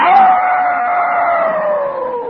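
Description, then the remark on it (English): A person imitates a wild female dog calling to a male dog from a distance: one long, loud, sustained howling tone that slowly glides downward in pitch, alone with no talking. “The wild girl dog called to the boy dog, at first from a distance, like this.”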